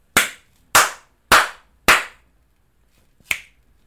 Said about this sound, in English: Four claps and a snap. Very, like, slow, subtle snap.